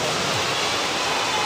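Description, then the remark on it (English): Steady rain pours down in a dense, even hiss, continuous and fairly loud for the whole moment, with no voices or other sounds breaking through. “Thank the Lord for rain.”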